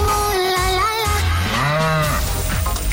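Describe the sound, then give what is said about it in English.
A loud cow moo sound effect from the Cork's 96 FM Cash Cow radio game, a drawn-out low bellow that swoops up and down in pitch across a few seconds, with no talking over it. “Because if the cow moos, go on. I lose.”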